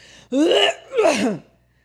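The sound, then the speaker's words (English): A voice imitates a stepdad's habit of loud throat clearing in public, in two harsh, rasping, forceful bursts, with a brief pause between them and no words spoken. “He used to clear his throat too much in public.”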